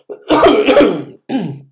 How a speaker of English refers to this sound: Man, coughing like crazy tonight.